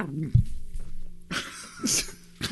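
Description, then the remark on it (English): A person vocally imitates a howling dog on the street, starting with a short wavering howl-like cry followed by several breathy, raspy bursts, without any words. “All the dogs on the street are fucking howling. Or there's just the one that goes like this.”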